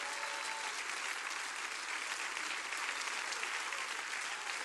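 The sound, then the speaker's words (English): An audience claps with everything they've got at the preacher's call, a loud, dense burst of applause that holds steady for several seconds, a continuous wash of many hands with no voices standing out. “I want you to clap with everything you got.”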